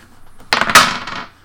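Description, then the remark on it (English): Dice clatter onto a hard surface with two sharp hits and a short rattling tumble that quickly fades, fairly loud, with no voices: the first roll of the dice, landing on two, in a game of Snakes and Ladders between two men in their 30s. “So you've got the first roll of the dice.”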